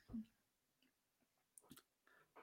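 Crunchy chewing of an apple, a few short bites and munches with soft mouth noises between them. Faint, quiet, with no clear talking.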